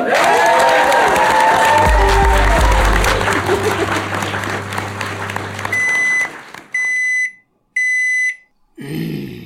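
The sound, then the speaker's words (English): A live audience applauds and cheers loudly for about six seconds, voices whooping over the clapping, then the crowd noise cuts off and three sharp electronic beeps sound in quick succession. “Thank you very much to the audience. Clap and then it will be the end.”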